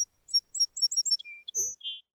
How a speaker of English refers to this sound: And little bird flew to the highest branch of the tree next to Mary and sang as loud as her little voice could sing.